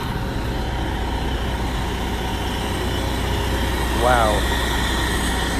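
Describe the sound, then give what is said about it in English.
Heavy fire truck engines idle at a fire scene where firefighters are cleaning up, in a steady, continuous low rumble that fills the whole scene, with a brief wavering higher tone rising above it near the end. “So crazy, all these firefighters here, fire trucks, it's nuts.”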